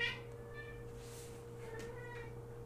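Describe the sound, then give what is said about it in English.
A cat meows a couple of times from further down an alleyway, thin and faint, over a steady low mechanical hum that runs throughout. “And there's a cat further down the alleyway that you can hear.”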